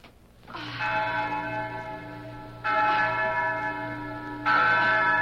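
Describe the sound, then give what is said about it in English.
A large bell at the Hacienda Dolores, rung to summon the men, rings out three times at a slow, steady pace, each loud clang ringing on and overlapping the next. No one speaks. “ring the bell, Inez”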